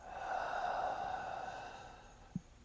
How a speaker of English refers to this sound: You're going to breathe in through your nostrils and exhale through your mouth.